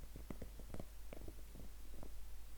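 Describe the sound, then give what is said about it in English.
A dog, Freya, gnaws on her plastic bone, making irregular clicking, crunching bursts with short gaps between, fairly quiet over a low steady background hum, with no one talking. “in the background you might be able to hear some beautiful ASMR of my dog Freya chewing on her plastic bone.”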